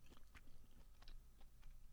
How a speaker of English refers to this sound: Are you going ASMR right now? Yeah, sorry, I was chewing a little bit in the microphone there. I'm sure that was uncomfortable for some people.